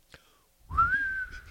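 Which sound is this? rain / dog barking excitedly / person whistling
person whistling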